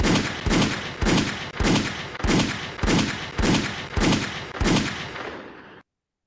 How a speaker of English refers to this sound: We need more gunshots in this building, DJ.